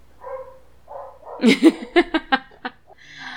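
A quick rhythmic run of about six dog barks, evenly spaced and fairly loud, set between softer vocal sounds before and after.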